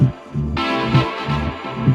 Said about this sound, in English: I say it's a simple rhythm of the heartbeat.